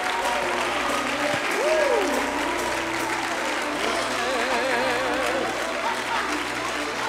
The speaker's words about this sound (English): Come on, somebody, clap your hands, all you people. Clap your hands, all you people.